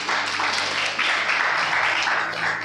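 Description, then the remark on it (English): A crowd at a Christian men's meeting applauds the Holy Spirit, many hands clapping together in a dense, even wash of sound that holds at the same fairly loud level for a few seconds without pausing. “Let's applaud the Holy Spirit for that.”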